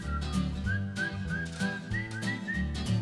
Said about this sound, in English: Who's that whistling, you? It is.